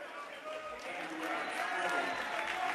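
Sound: basketball crowd applauding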